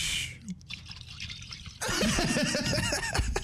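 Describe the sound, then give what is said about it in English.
A voice imitates the water as a kid falls into a pool: a short hissing splash, a brief pause, then a loud warbling, bubbling gurgle that runs for a couple of seconds. “Went like he was like... like the water.”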